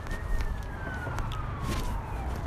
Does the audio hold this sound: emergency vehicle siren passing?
yes